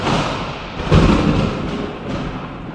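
A thunder sound effect: a loud, deep rumble that swells into a heavy boom about a second in, then rolls on as a steady crackling roar. No voices.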